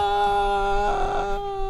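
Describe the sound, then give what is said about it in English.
A voice imitates a newborn baby crying: a single sustained, high-pitched wailing cry with steady tone and a slight rise in the middle, fairly loud and alone. “I got home at 12 o'clock, and you know I got a newborn, and the newborn started with the.”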